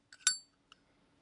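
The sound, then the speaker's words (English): The lid of a genuine Zippo metal lighter snaps shut with a sharp, bright clink that rings briefly. A small click comes before it and one more light tick follows, with no voices. “Does it make that cool noise when you flip it closed? Absolutely.”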